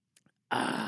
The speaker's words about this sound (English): Okay, we're going to take a sip of this fine high-quality H2O.